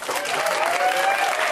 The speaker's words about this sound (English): I'm Cameron Esposito. I'll be your host tonight. You can applaud for me.